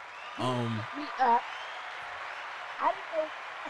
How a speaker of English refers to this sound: Round of applause.